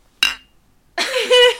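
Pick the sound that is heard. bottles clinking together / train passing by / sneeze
bottles clinking together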